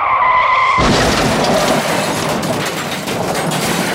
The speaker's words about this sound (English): Suddenly, there's a loud crash outside. They run to the window and see a bus has run into a telephone pole.